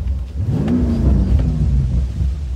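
A BMW M5 sport sedan's engine revs up hard with a deep, throaty rumble while driven on smooth roads in the Palos Verdes hills, its pitch climbing then easing back as it keeps pulling, loud, with no voices.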